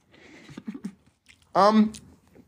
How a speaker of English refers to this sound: You're just munching in their ear? Hmm? I said you're just going to keep munching in their ear?